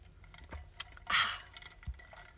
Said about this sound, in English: Water break.